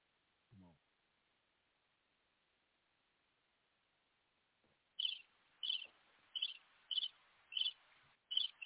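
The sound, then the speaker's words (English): Crickets chirping in a steady, evenly spaced rhythm, about six high, bright chirps following a stretch of near silence, clear with a faint hiss beneath. “Yeah, that's the crickets.”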